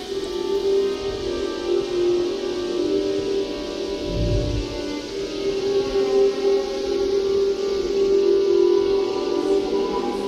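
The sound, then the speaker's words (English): Electron cyclotron waves in space plasma, sensed by the plasma wave instrument on the Voyager spacecraft in the ionized gas of space and converted into audible sound: layered, steady droning tones that hold for the whole stretch like a sustained siren wail, with a brief low rumble swelling midway. No one speaks. “Whistles and chorus and electron cyclotron waves and all kinds of things.”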